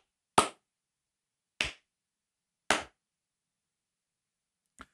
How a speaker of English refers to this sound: Sometimes when you're on TV, they do a clap test to make sure the lip sync is good. Is the sound coming over right? I actually would clap faster, but my elbows and shoulders don't work.